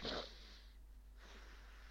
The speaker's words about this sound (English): Let me just take a sniff of this well-known nasal inhaler that refused to sponsor me back in the summer.